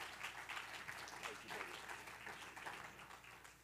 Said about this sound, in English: Let's clap our hands unto the Lord as he comes this evening.